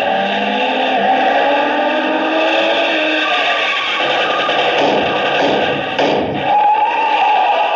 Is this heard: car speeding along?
yes